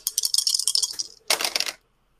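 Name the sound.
three dice being rolled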